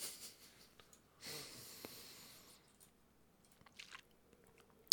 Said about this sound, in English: I still have chocolate in my mouth. I'm going to clear it real quick with some water.